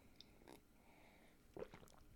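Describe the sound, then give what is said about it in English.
Quiet mouth sounds of someone sipping water: a soft slurp, a pause, then a cluster of wet gulping and swallowing noises near the end. No one speaks. “Now, hold on, I need a sip of water.”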